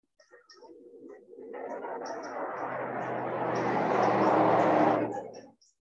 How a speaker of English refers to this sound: I'm probably sitting in a more active sound environment than you may be. There are cars and trucks pretty continuously, but there's also all manner of birds.